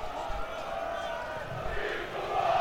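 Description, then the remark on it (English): Barrow's football crowd roars and chants after an equaliser from Sam Bone, a steady, dense wall of voices, the singing swelling slightly louder toward the end with no pauses. “Yep, this ground is rocking now since that equaliser from Sam Bone.”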